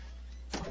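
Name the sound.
door being closed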